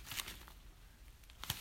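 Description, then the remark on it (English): Soft crinkling of old paper documents, some in very good condition, being handled, with two brief rustling bursts at the start and end and quieter shuffling between them. No one speaks. “It's really, really fascinating, all the different bits of paper you found.”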